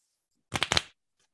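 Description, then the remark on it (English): A quick riffle of a deck of playing cards being shuffled, a short burst of crisp, rapid flutters, with no voices, then quiet. “Got my little cards out. Let me get a little shuffle going on.”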